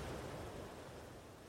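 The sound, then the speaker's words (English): A soft, steady hiss of ocean waves washing onto the shore of a sandy beach, low and even, with no voices and no distinct individual crashes in the brief stretch. “Enjoy the sounds that the waves make as they wash into the shoreline.”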